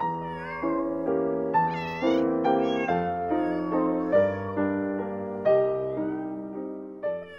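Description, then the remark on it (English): A crowd of neighborhood cats and kittens swarming a meat seller for their morning meat mews over and over, their calls overlapping into a continuous, fairly loud chorus with no pauses and no talking. “Whenever the meat seller would arrive, they would swarm, mewing incessantly for the morning nibble of meat.”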